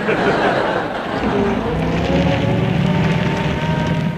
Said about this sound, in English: Hello. Engine trouble. Fall out and push.